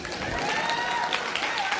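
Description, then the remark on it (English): An audience at an evening church service applauds in a steady, dense wash of clapping that holds at an even loudness for the full two seconds, with faint voices mixed into the crowd noise. “Great crowd here tonight.”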